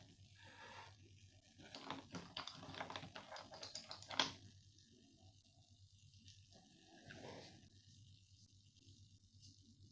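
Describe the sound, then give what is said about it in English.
A pencil is sharpened before drawing Quan Yin, in a burst of quick, rhythmic scraping grinds lasting a few seconds, ending with a sharp click, then a quieter scrape later over a low steady hum. “Let me make sure the pencil's sharpened.”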